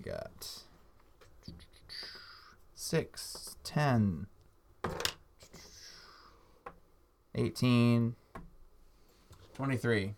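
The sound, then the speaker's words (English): Dice clatter across a tabletop in a scatter of quick, sharp clicks and rattles, mixed with murmured voices and brief exclamations from people. “I'll roll it on the table.”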